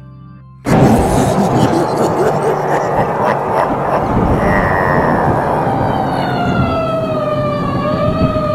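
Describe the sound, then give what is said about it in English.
A vehicle siren wails loudly over a rumbling engine, its rising and falling tone sweeping steadily, then gliding downward toward the end, with voices talking faintly underneath. “So why the siren?”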